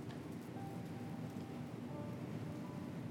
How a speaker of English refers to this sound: It started to rain.